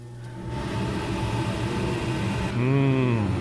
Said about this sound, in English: Ooh, let me turn on the fan.